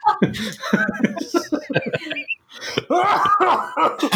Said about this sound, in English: Now you're making me feel like I have to cough. You don't have to cough.